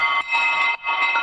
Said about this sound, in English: These ice bells.